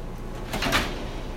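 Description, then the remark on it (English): A bent sliding screen door is yanked open, the screen catching on the door handle, with a short, harsh scraping screech that peaks briefly and fades, over quiet background hum. “Rip the damn door off the hinges. No, the screen just gets like stuck on the door handle because the screen is bent because somebody ran into it.”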